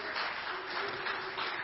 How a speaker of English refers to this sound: I'm sure the parents would also want to give a round of applause for all the people in this church that has helped them raise, because it does take a village, amen? And so let's give yourself a round of applause.